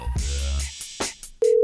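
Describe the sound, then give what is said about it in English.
A steady electronic telephone tone comes in loud after a few faint clicks and a low hum, sounding like a call ringing through a handset line. “All right, it's ringing,”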